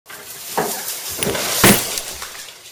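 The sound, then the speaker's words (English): A brief clatter as a decorated tree is knocked over, followed by a bright crash of a Xanax bottle breaking, with a few tinkling fragments settling afterward. “And now you've knocked over the single shaming tree.”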